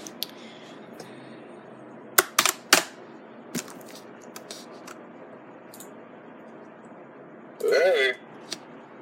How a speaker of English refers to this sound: Sorry guys, my keyboard is very loud, but I like it loud. I do.